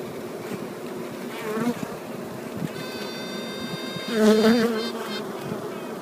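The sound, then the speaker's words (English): Queen honeybees still in their cells quack in response to a first queen: short, nasal, duck-like honking notes rising over the steady drone of a buzzing hive. A louder burst of quacks comes near the end. “They respond with a noise called quacking. It sounds like a duck honk.”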